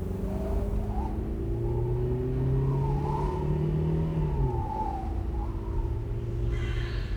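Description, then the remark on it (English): A car speeds along an empty desert road with a steady, loud engine drone and road rumble, a rattling noise running through it as the engine pitch shifts slightly. No one speaks. “I hear a kind of rattling again. Should I stop and check if something's wrong?”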